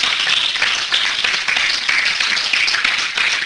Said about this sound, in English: Give God a hand clap of praise up in here, up in here.